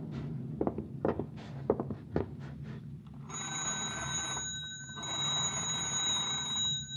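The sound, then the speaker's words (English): A few sharp clunks and rattles of a telephone handset being picked up, followed by a telephone bell ringing in two long, steady bursts, fairly loud, with no voices. “I'll telephone the girl.”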